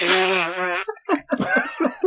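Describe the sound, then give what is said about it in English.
A loud, buzzing fart noise blown with the mouth against the crook of an elbow, lasting just under a second, followed by a burst of voices and laughter. “the butt cheeks just separated to let the whole fart out in one go.”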